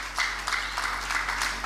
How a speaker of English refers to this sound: Thank you. Can we clap for Pastor?